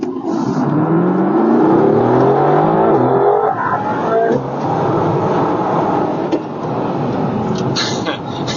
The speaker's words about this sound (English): Yeah, this is not a slow car, the Mercedes AMG GT R. It is 577 horsepower, 4-liter V8 that just doesn't take much to open up and get you into trouble with the speed limit authority of the local area.